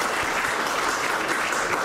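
round of applause

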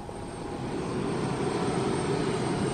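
airplane engine in flight

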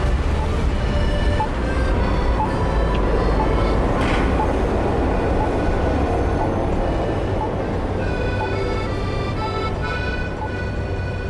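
tram passing on rails

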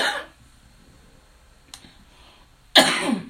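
coughing

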